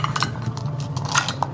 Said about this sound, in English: That's a lot of dice he's picking up.